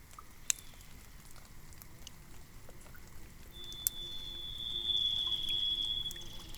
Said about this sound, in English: very light rain on the salal leaves.